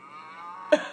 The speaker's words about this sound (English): There's no context, right? It's just a cow.